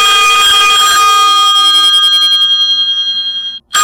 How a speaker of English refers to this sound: And now ringtone. We have different ones now for the alarm. Ring two. Here's ring one. Ring one is.